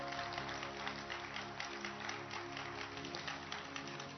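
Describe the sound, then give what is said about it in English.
A crowd claps steadily for about four seconds, a dense patter of many hands at an even, sustained level, over a low steady hum. “By this time, you should be clapping.”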